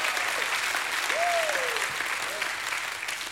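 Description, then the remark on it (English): A large church audience claps steadily and densely throughout in praise of God, with a single rising-and-falling cheer or whoop cutting through the applause partway in and a shorter call near the end. “Give God a hand clap and a shout of praise.”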